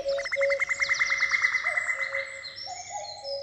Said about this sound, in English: It felt like being let into a secret world where bird noises kind of become conversations.